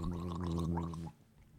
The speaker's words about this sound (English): Definitely was made for shooting. When you shoot it, you just don't down it immediately like shitty whiskey or scotch. You let it sit for a second. Then That's like exactly what I've been doing. Gargling.